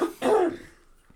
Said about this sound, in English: Oh, I just coughed it up.